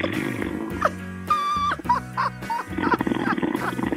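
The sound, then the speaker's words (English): A caller to the CBS Sports Radio show After Hours, who fell asleep on the line, snores loudly over the phone in a run of rough, growling snorts, several short bursts in quick succession with a raspy, roaring tone and shifting pitch. “You had a guy call up that was snoring on the phone, and your laugh was just cracking me up.”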